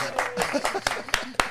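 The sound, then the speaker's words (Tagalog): A few scattered, sharp hand claps ring out over a murmur of crowd voices, more a light smattering of applause than a full ovation, as a large crowd greets a guest being introduced. “May palakpak pa talaga.”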